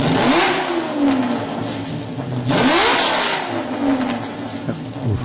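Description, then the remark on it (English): An early-model car with a 5.7 12-cylinder engine revs loudly, climbing and dropping in pitch in a couple of throaty surges, with a steady rumbling idle between them and no one talking. “It was one of the early model cars, 5.7 12-cylinder engine.”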